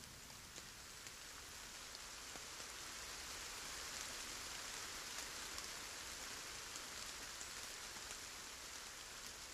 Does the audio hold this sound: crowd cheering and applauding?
no